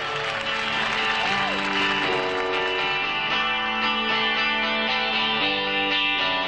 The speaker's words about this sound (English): And the crowd just loses it.